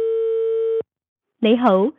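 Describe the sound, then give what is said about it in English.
A single steady telephone ringback tone on a call to a phone number in China sounds for under a second, clear and even, then stops; after a short silence a recorded voice begins speaking. “It rings through, and then that ring ends in some kind of pre-recorded message, right?”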